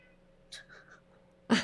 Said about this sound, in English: Hi, Kitty. Hi, Kitty. She's mad.